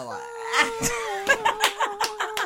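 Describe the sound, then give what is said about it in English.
A person drags out a long, wavering meow imitation, held steadily for a couple of seconds while bursts of laughter and giggling break in over it. “You gotta sound like a cat.”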